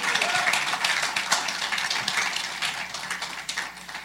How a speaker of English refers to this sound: Let's give God a great big round of applause. Woo! Thank you, Jesus. Woo!